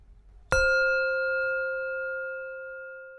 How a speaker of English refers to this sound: From time to time, you will hear a chime.